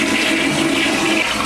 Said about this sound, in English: I sometimes have a toilet flushing sound effect. Oh, there it is.